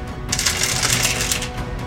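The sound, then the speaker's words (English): Many dice tumble and rattle together on a table in a dense, continuous clatter, fairly loud, with no voices over it. “That's a lot of dice.”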